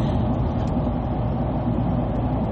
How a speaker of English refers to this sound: driving next to a big truck, sorry about that.